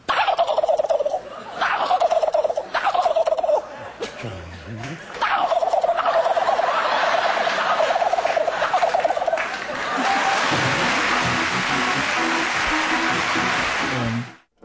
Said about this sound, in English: And this is your fourth place gobble. This is the Eastern Turkey.